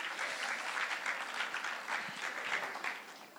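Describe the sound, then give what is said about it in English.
A crowd applauds steadily to welcome a man invited up to speak, many hands clapping in a dense, continuous patter that stays fairly loud and even throughout, with no voices standing out. “Give James a warm welcome, ladies and gentlemen. A round of applause.”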